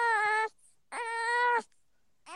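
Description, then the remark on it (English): A baby boy cries in short, whiny bursts: two moaning wails, each about half a second long, and a third beginning. The cries are fairly loud, with brief quiet gaps between them. “When he cries, he does like these little moans and he goes, wow.”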